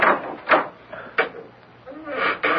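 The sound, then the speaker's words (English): A door at the top of many steps is unlocked with a key and opened: a few sharp metallic clicks and rattles from the lock at uneven intervals, followed by the scrape and thud of the door swinging. “This is the door, Monsieur Cachon. Well, open it.”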